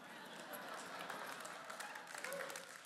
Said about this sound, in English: One person clapping here, thank you, mom.